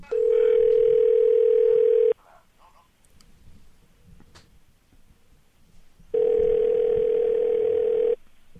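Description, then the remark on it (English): A telephone line rings out as a phone call is placed: two loud, steady electronic ring tones, each lasting about two seconds, separated by a few seconds of quiet line hiss. “You sit down, press record. I make the phone call. And here it is.”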